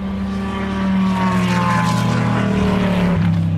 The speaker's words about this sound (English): It's a Ferrari and a Corvette.